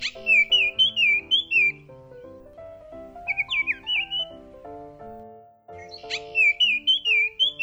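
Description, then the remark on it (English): A female Baltimore Oriole (Icterus galbula) sings three bursts of clear, whistled chattering phrases, bright, with pauses between them and soft instrumental music playing steadily underneath. “And the female, which sings too.”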